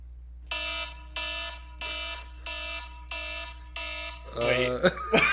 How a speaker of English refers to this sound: Sound the alarm. Yes. I was going to say sign the alarm. Sound the alarm.